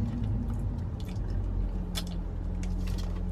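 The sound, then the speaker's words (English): A wet slurp of someone sipping a drink, with soft liquid squishes and a couple of brief sharper sips over a low steady hum, no talking. “He took a sip of his drink and then had to insert sips tea.”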